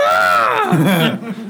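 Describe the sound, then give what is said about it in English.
A person's voice imitates a screaming goat: one loud, strained bleating cry that starts high and slides downward, then breaks into a rougher, lower wavering sound before trailing off. “Now you do one of the screaming goats.”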